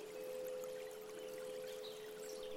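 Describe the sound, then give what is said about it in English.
A steady, soft wash of flowing water runs throughout, with a sustained bell-like tone ringing over it. No voices, and the level stays even from start to finish. “Imagine that you are back here in this spot, listening to the birds and the sound of the bells and water.”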